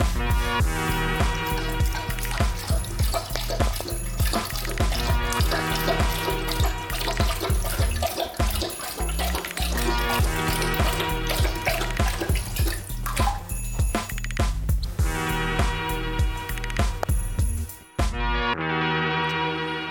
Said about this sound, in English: Yeah, that's one of my Dobermans. Now, we've trained him not to drink out of the toilet. You saw it in his eyes, that disobedience, kind of like.